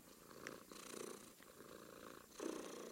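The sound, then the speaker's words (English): A cat purrs steadily, its rumbling breathy cycles swelling and easing in a slow rhythm across a few seconds with no talking. “No, you're a good kitty.”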